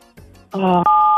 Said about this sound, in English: Okay, I thought you were going to swear the way you beeped yourself.